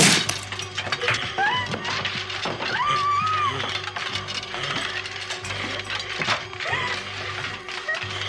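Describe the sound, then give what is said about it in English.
Michael Myers smashing through the bedroom closet door where Laurie hides, in a scene from the film Halloween: repeated sharp cracking and splintering wood crashes over a steady low drone, and high wavering vocal cries rising in between. “But Michael Myers finds her and tears through the closet door in my favorite Halloween movie of all time.”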